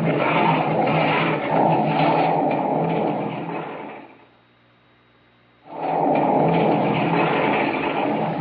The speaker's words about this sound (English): Down from the top of the mountain hurtles the mass of rock and earth.